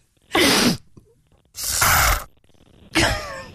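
Three sharp, breathy sniffs, loud and evenly spaced about a second apart, each a short hissing burst of air with no talking between them; the last one carries a faint whistling tone.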